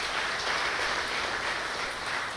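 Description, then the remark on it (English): A crowd applauds steadily at a church, a dense, even wash of clapping for the church's CoLab giving program that stays at the same moderate loudness for a couple of seconds, with no voices over it. “Yeah, let's give a round of applause.”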